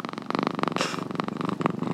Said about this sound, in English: guys, can you hear my cat purring?